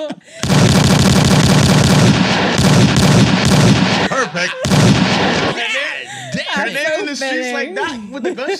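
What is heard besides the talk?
gunshot sound effects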